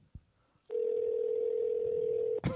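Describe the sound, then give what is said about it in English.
An outgoing phone call's ringing tone, a call to Oklahoma, sounds as one steady, unbroken electronic beep lasting under two seconds, clear, framed by a soft click before and a brief rustling burst after. “Why does no one answer your phone calls?”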